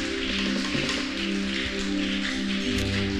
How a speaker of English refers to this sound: Go ahead and celebrate God with a better clap, oh friend. Go ahead, go ahead. Go ahead and celebrate God with a better clap, oh friend. Oh, do it better to the glory of God.